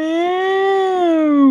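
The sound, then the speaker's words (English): A person imitates the air raid siren set off when a crank is turned to open a bunker door, with a single sustained, steady vocal wail that rises slightly in pitch, then sinks again as it fades out, loud and alone for about a second and a half. “And when they're doing that, it sets off a kind of an air raid siren, you know, with a...”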